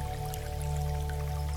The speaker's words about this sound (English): You tune into the sound of the waterfall as it cascades down, just splashing into the pool of water.